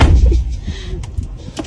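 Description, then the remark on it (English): A car door opens and shuts with a heavy, muffled thump at the start, followed by a few faint clicks and some rustling against quiet outdoor background. “I'm going to let her just come to the door. I'm not going to open the door for her.”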